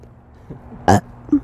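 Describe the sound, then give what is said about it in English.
A short, throaty burst like a strained, failed burp, fairly loud, followed by a fainter small gulping sound a moment later. “Sorry, I keep trying to burp, but it wasn't coming out.”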